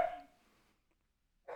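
A dog named Cinco barks twice: one bark at the start that trails off into quiet, then a second sharp bark after a pause. Both stand alone with no talking.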